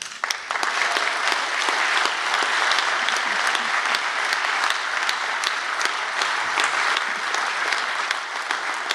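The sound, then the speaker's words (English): Sustained applause from a large audience, a dense steady clatter of many hands clapping at once, loud and even throughout with no voices standing out. “we should first wave to everybody who's watching online and then give a massive round of applause for a guy who came from Glasgow”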